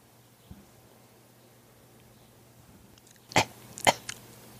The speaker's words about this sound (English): He had a little COVID cough there.